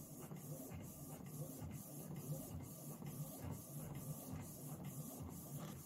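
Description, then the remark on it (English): A printer prints an outline onto paper, its mechanism whirring and ticking in a regular rhythm with periodic pauses as the print head passes back and forth, continuous throughout. “How long does it take to print the outline out?”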